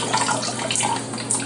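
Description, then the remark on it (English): A steady rush of hot water pours from a tap, a continuous splashing hiss with no pauses and no voices. “If you don't want to use hot water”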